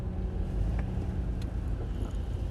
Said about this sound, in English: Dude, like, there is so much fucking traffic, bro. That's a lot of traffic.